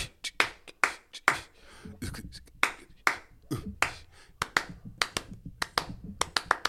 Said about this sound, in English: And he added the hand clap.